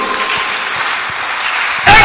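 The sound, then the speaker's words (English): A crowd applauds steadily, a dense wash of many hands clapping that swells suddenly louder near the end. There is no speech over it. “If you are clapping, you are clapping for God, don't.”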